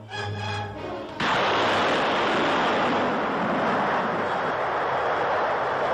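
A steady low tone gives way abruptly to a loud, sustained explosive roar of an atom bomb test at Yucca Flats, Nevada, heard from just over 3 miles away where U.S. Marines take cover on maneuvers: a dense rushing rumble that holds strong for several seconds with no voices.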